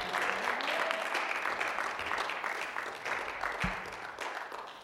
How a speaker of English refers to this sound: Amen. Give God a clap, a shout. Show him you love him.